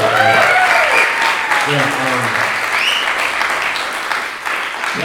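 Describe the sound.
A crowd applauds steadily for several seconds, dense clapping filling the room at a loud, even level, with a few voices and cheers rising faintly within it.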